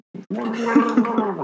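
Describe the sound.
A man gargles water: a brief sputter, then a sustained, throaty, bubbling gurgle with a voiced hum running through it, fairly loud and heard on its own.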